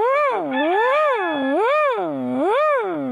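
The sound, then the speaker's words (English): A sound drop of a loud, strained wail meant as a dying crow's call, its pitch swooping up and down in three slow waves over about three seconds, with no talking. “That's a crow dying, is what that is.”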